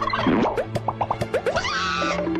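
A turkey gobbles in a quick, gurgling burst of warbling notes, loud, with no one talking over it.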